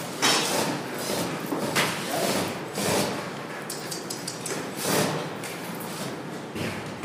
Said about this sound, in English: We punch a little hole for you. That's a really big drill bit, and that'll just help you stay on course a little bit.